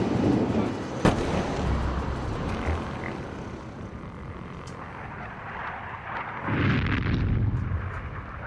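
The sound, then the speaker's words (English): Bombs dropped by the Israeli Air Force exploding far away over Beirut at 4 a.m. on the night of 13 to 14 July 2006: a sharp blast near the start, then low rumbling booms rolling in and out over a steady background hum, with a heavier surge toward the end. “Far away, we hear bombs falling down.”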